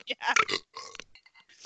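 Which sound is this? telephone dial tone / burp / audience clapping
burp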